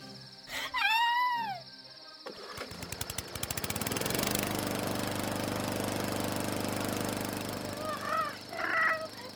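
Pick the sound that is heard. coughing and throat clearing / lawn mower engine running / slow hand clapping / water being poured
lawn mower engine running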